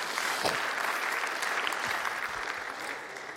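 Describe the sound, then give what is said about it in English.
A room full of people applauds steadily, a dense wash of many hands clapping at once that holds fairly loud throughout, with no voices standing out above it. “If one person claps, we may as well all clap.”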